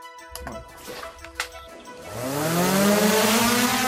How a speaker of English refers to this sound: That's a drone being launched in May near Donetsk in eastern Ukraine.